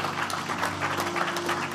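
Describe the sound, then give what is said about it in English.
An audience at a church service claps steadily in praise of the Lord, a dense wash of many hands, with a sustained musical tone humming beneath the applause. “Let's give the Lord a hand clap of praise in this house.”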